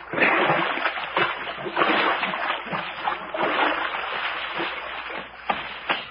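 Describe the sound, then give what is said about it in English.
Repeated splashing and sloshing of feet wading through shallow, muddy creek water at twilight, steady, with uneven steps and occasional sharper splashes. “Oh, boy, it feels good to get my toes out of this mush.”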